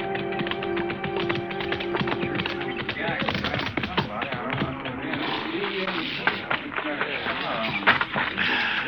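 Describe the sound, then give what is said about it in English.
Horse hooves clip-clop in a steady, uneven patter of sharp taps, with a sustained tone early on and busy background noise throughout. “I'll turn your horse in with a remuda.”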